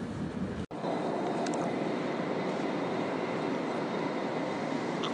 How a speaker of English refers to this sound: Welcome to Dublin. I'm walking down the side of an intercity train that's painted green, yellow, and the logo of intercity, and the word mark, it's got orange in it as well.